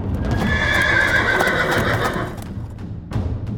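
Horse hooves clip-clop in a steady rhythm while a horse whinnies loudly, with a brief pause before the hoofbeats resume near the end.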